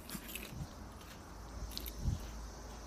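Soft, crunchy chewing of popcorn, with a few irregular bites and mouth noises over about three seconds and no talking, set against a faint background hiss.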